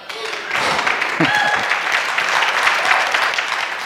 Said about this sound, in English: See, when you clap, you're going to encourage me to go faster. And I actually need to rein in.